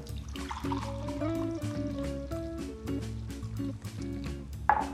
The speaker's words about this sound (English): This is getting nice and hot now. And I'm just going to pour this into this lovely mug here.